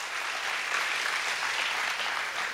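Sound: audience applauding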